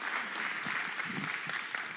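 An audience claps in a steady, dense patter of overlapping hand claps, moderately loud and sustained, with faint murmuring voices beneath.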